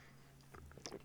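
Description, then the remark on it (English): Quiet slurping of a drink: a few short, wet sucking bursts in the second half, with no one talking. “No chirping in the background, just slurping, no chirping.”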